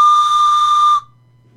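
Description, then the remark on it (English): A novelty toy train whistle, a pro wrestling merchandise item from a subscription crate, gives one loud, steady, shrill blast for about a second, then cuts off abruptly, leaving only a faint low hum behind. “I just got in my pro wrestling crate the Godfather's Ho Train whistle”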